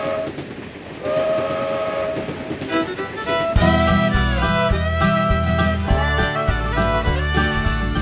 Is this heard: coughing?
no